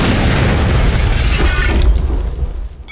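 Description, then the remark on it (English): A loud explosion, a detonation following a countdown, erupts with a deep booming roar and crackling debris, sustaining its rumble for a couple of seconds before fading out, with no voices present. “Warning. Combat commotion. Preparing for detonation. In 5, 4, 3, 2, 1.”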